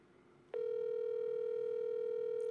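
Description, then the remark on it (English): A single steady ringback tone sounds for about two seconds on a phone line, loud, heard on an outgoing call with faint line hiss around it and no voices. “And it's ringing.”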